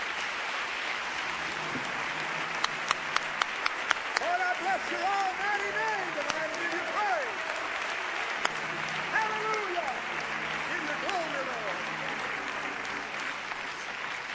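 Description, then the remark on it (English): An audience claps their hands to thank God in sustained, dense applause, with scattered voices calling out and cheering over the steady clapping. “Clap your hands and thank God for His goodness and mercy to us.”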